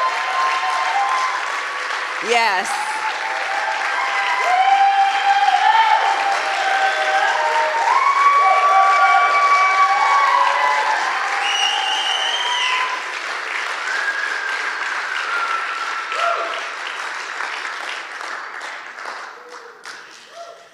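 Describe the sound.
A large crowd breaks into sustained, loud applause with scattered whoops and cheers, holding steady for about twenty seconds before gradually thinning out; a voice briefly speaks near the start.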